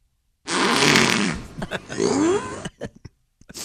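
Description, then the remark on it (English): A loud, sputtering fart noise lasting about two seconds, breathy and buzzing, likely blown with the mouth, followed by a few short scattered clicks and rustles. “Yeah, because he goes, it like makes here, a fart noise.”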